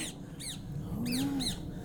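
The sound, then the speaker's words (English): A parakeet gives four harsh, arching screeches at a steady pace, shrill and fairly loud, while a low droning tone swells briefly underneath the later calls. “Parakeet.”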